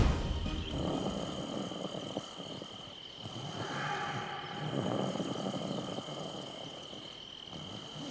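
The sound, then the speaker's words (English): Loud, rough snoring from a man asleep in a tent rises and falls in slow, rasping swells, each breath a deep rumbling drone, over a steady high-pitched insect-like whine that continues throughout. “He snores worse than Dad.”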